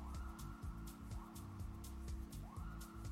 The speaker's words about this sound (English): Those are sirens bugging me out.